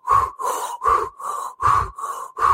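Rapid, forceful deep breathing in the Wim Hof method's basic breathing exercise, with loud inhales and exhales alternating in a steady, quick rhythm of about three full breaths in under three seconds. No talking.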